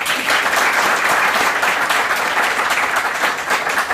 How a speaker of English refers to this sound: Certainly, thank you very much for the panel coming today. So, a quick round of applause for the panel.